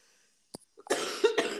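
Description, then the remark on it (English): A loud bout of coughing: a short sharp hack, then two harsh, raspy coughs in quick succession, with no talking. “Sorry, I was having a cough break there.”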